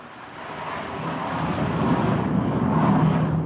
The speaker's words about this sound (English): Incoming plane.